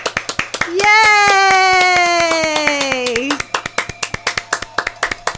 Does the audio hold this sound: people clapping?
yes